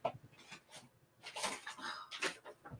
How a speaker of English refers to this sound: So, sorry guys, my dog is chewing on something. I don't know if you can hear it.